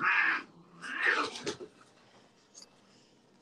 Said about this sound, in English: Oh, the cats.